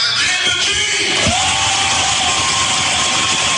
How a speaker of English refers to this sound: Are they applauding? Yes.